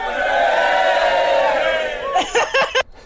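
A crowd in a cafe roars and cheers together for a couple of seconds, then it breaks into a few short, rising whoops before cutting off abruptly.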